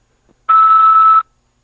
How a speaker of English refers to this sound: After the beep, press 5 to accept this call.